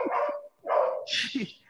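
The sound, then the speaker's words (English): A neighbor's dog lets out three quick, harsh barks in a row, moderately loud, with no one talking over them. “Sorry, the neighbor's dog went off”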